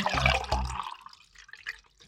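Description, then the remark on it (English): A can of Schilling Hard Cider, Passport Pineapple Passion Fruit, is cracked open with two quick, sharp bursts of pop and hiss, followed by softer fizzing and bubbling as the drink is poured. No one speaks. “The time where we all pop our tops off and relax.”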